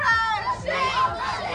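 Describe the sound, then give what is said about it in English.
A crowd of protesters shouting together at City Hall in the evening as the Taoiseach, Micheál Martin, arrived, many raised voices overlapping in a loud, continuous wall of cries with no clear pauses. “The cries of protesters yesterday evening as the Taoiseach arrived at City Hall.”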